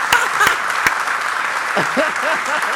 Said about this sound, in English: Hey, that's applause right there. That's applause right there.